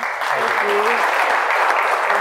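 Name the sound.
audience round of applause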